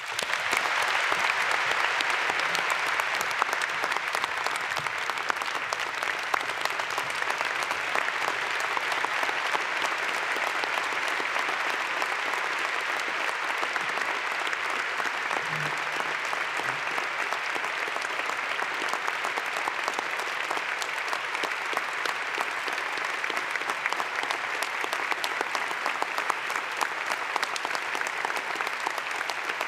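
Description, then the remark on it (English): Sustained audience applause for the service of President Henry J. Eyring and Sister Kelly Eyring, a dense, steady wash of clapping that holds at an even loudness for about half a minute with no talking over it. “Can we please pause to applaud the Eyring's service?”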